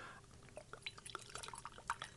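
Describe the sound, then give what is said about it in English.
A drink being poured into a small tasting glass for a tasting, heard as a quiet run of small bright splashes and trickling drips with rising, bubbly tones. No one speaks. “So I'm going to pour something out now and you're going to be the guinea pig.”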